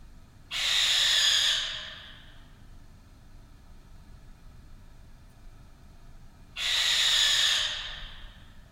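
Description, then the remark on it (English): Two harsh, rasping screeches of a barn owl (white owl), each lasting about a second, separated by several seconds of quiet background hiss. The calls are clear, with no voices. “This week, three pieces with the sound of the white owl.”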